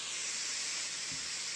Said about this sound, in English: Are you taking a shower? That's 10 hours of TV static on YouTube. Sounded like a shower.